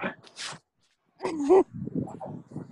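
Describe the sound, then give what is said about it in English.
A dog whines in short, high-pitched, tonal bursts separated by a brief silence, followed by softer, lower murmuring sounds. The dog needs to go out to pee and poop. “Quit whining. You have to go pee-pees and poopies.”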